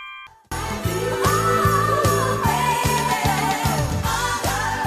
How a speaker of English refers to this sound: Oh, those bell chimes, synthesizers, drums, and oh, don't forget those backing vocals are just magical.